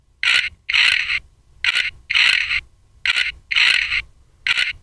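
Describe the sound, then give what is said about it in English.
A thumb-sized push-button pig toy snorts in a rhythmic series of seven raspy, hissing grunts, alternating short and longer bursts with brief gaps between them. No one talks. “This is a little pig toy. It's about the size of my thumb, maybe, and it's got a little button on it, and you push it, and it says this.”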